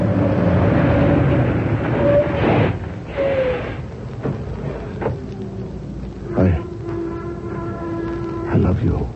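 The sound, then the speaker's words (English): A heavy truck roars with a droning engine and horn-like tones, then a sharp crunching collision with a car rings out, followed by another heavy metallic bang. “Hey, he's going to hit the car”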